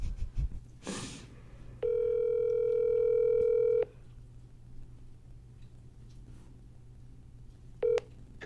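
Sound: phone call ringing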